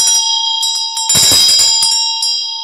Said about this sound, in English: You hear those bells in Tibetan music? When you hear a bell, it means peace comes into the world.